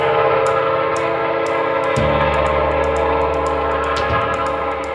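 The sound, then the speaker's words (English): A train horn blares loud and sustained over the rumble of a passing train, its steady harmonic tone shifting pitch partway through, with rhythmic clicks of wheels on track above the roar. “What was I saying about a train?”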